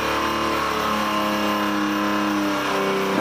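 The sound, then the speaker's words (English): A car engine screams at very high RPM at a test facility, a loud sustained whine with strong harmonic tones holding steady, no one speaking over it. “That's revving pretty high.”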